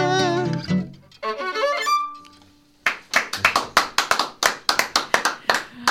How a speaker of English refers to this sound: I wish there were more than two of us applauding right now. That was just and the crowd goes wild. Well, 100% of the crowd went wild.